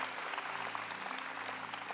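A church audience at City Harvest claps steadily in a dense, continuous round of applause for the Lord after a sermon. A low steady hum lies beneath, and the applause is sustained at even loudness throughout with no voices standing out.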